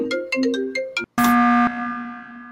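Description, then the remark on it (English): A marimba phone ringtone plays alone: a quick, bright run of mallet-like notes, a brief gap, then a louder struck chord that rings out and slowly fades. “Go ahead and listen to Marimba.”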